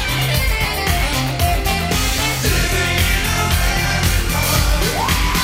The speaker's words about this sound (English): Thank you for the round of applause, everyone. Oh, that wasn't anyone. That was just...